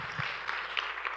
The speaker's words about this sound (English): If you receive that, why don't you clap your hands? Come on. Yeah.